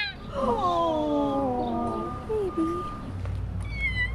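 Two young kittens, just pulled out of a drain pipe on 10th Street in Washington, D.C., give several thin, high-pitched meows overlapping in a quick cluster, fairly loud over a steady low outdoor rumble, with a fainter mew or two trailing off near the end.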